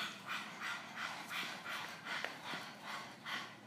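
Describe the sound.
A person pants rapidly like a puppy as a breathing exercise, with about eight quick, breathy huffs in a steady rhythm, moderately loud, no talking.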